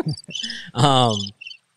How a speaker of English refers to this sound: That's actually Christmas in Arizona right there. Totally, the crickets. Absolutely. That's a really long one.